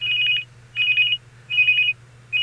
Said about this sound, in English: I got a phone call. I put it on hold, so don't worry about it.